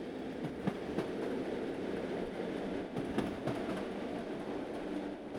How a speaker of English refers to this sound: We carry microphones underneath our trains, so we measure the noise levels under the train with the wheel-rail interface.